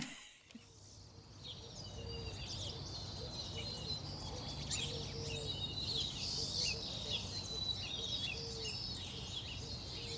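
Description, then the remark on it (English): At sunrise in Klamath Falls, Oregon, in spring, a chorus of migratory songbirds, including white-crowned sparrows and pine siskins, sings and twitters continuously while foraging in trees outside a house, over a steady low outdoor rumble, with no talking. “The migratory birds are coming through, headed north and into the mountains for spring. You can hear white-crowned sparrows, pine siskins, foraging in the trees outside my house”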